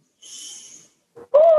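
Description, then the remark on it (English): A long, airy breath drawn in through the nose by the sea, smelling the salt air, steady for about half a second, followed after a short pause by a brief voiced hum. “Take a nice deep breath in.”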